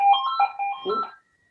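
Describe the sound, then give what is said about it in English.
A landline telephone rings in an office with a warbling electronic trill lasting just over a second, then cuts off into silence. No one speaks over it. “Just started in a new office and we put a phone in here and it's okay.”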